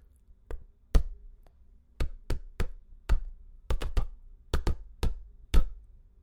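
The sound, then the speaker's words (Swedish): Popcorn popping: about a dozen sharp, crisp pops at irregular intervals, some in quick pairs, with a soft low rumble between them and no voices. “När jag blir lagad låter jag så här. Pop, pop, pop. Fast det verkliga ljudet, det är mer så här.”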